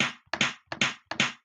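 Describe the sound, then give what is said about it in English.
Sharp hand slaps land in quick, steady succession, each one a crisp double smack repeating roughly every 0.4 seconds, loud and bright with no voices: a woman slapping six people one after the other as discipline. “That's when she slapped all six of us one after the other.”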